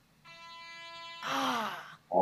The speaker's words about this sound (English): You got to answer that one. It's even though the buzzer went off, I want to hear the answer.